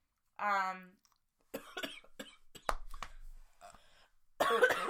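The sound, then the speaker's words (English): A run of short, sharp coughs, scattered across a few seconds and ending in a louder, harsher burst. A brief voiced sound comes just before them. “A little cough over there.”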